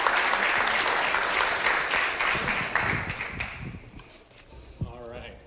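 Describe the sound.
The Vineyard Northwest church audience applauds loudly with dense, sustained clapping that gradually thins and fades toward the end, a few voices surfacing as it dies down.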